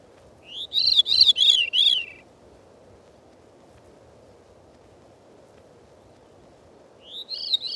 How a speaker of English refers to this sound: Next, the Veery's descending spirals.